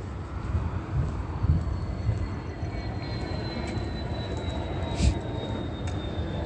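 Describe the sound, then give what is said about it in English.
An airplane drones overhead near an airport in a steady, broad roar, with a thin high whine slowly gliding downward in pitch as it passes, continuous throughout with no voices. “That's amplified audible activity. There are no planes taking off over here. They're stalking with airplanes.”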